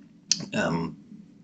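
A single sharp computer button click, close and crisp, followed by a short breathy rustle before things go quiet.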